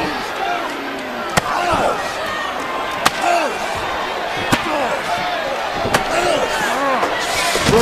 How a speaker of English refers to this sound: Broke that chair over. Broke that chair over Ambrose.